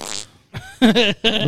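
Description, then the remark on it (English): A few buzzy, blown fart noises come in quick succession, fairly loud, with brief gaps between bursts; a voice imitates the sound rather than anyone speaking. “I could fart out blue and white flames.”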